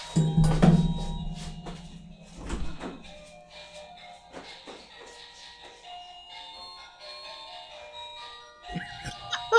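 A melodic doorbell chime, rung by someone wanting to be let in, plays a tinkling tune of sustained, ringing high tones, opening with a few low thumps and ending with a brief burst of voice.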